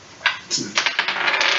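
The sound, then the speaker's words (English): Dice rolled for a perception check in a role-playing game clatter across a hard surface: a couple of isolated clicks, then a quick rattling burst of bright, rapid taps that trails off into scattered ticks. No voices are heard. “So you're gonna open the door, you guys walk into this room, I want everybody to roll a perception check.”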